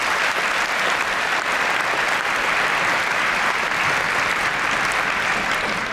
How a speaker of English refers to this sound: So a round of applause to our finishing VCE students.